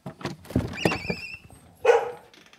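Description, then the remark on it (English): Thurber, a border collie, barks in a quick run of sharp, high yips at his home in an old New Hampshire farmhouse on a warm late-summer afternoon, then lets out one louder, fuller bark after a short pause, with no voices present. “On a warm afternoon in late summer, Thurber, the border collie, welcomes me into his home.”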